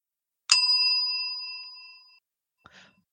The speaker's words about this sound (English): we have a little bell which dings like this.